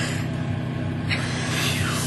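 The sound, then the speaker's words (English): A bag's zipper is drawn open in one short rasping pull over a steady low background hum. “Well, slide the zipper open.”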